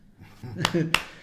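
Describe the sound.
Three sharp hand claps in a steady, evenly spaced rhythm, each bright and crisp, with a voice murmuring underneath the first two.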